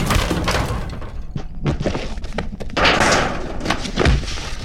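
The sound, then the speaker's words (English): A door is forcefully kicked in with a heavy thunk and splintering crash, followed by a few loud thuds and clattering debris, loud with no talking. “On three, we kick in the door.”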